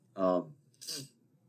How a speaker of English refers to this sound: Oh, he's sniffling today. But yeah, I know he's a little sleepy, but you know, we'll power through.